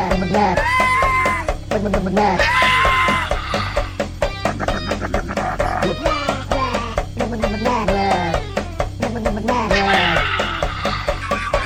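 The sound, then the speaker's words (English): A pug screams in high, bleating, wavering cries, repeated again and again over a loud, steady rhythmic backing that carries on throughout. “That's a screaming pug right there.”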